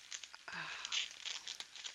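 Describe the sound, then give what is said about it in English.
Crackly ripping and crinkling of thin plastic as a plastic bag holding a gift of clothing is torn open, a few quick tearing bursts over two seconds with no talking. “Can hear me ripping the plastic open.”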